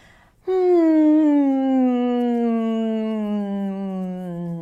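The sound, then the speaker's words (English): A single sustained hum, made while massaging the jaw during a voice exercise, starts after a brief pause and holds steadily for about four seconds, its pitch sliding slowly downward from a mid tone to a lower one. “Massage your jaw a little bit and hum.”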